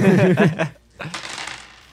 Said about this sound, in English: It's a lot of dice. It's a lot of dice.